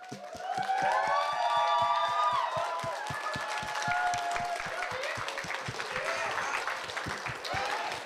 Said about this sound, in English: I just want to say thank you very much. You guys did a tremendous job. Let's give it a round of applause for the DoubleTree Somerset.